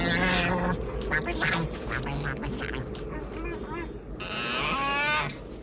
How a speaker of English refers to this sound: You know, I was thinking about Empire Strikes Back. You hear the Tauntauns.